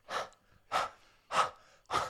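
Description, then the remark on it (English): Four slow, breathy exhalations of warm breath, each a soft whoosh pushed out by a person, spaced evenly about half a second apart with quiet pauses between. “You wouldn't mind breathing on me, would you?”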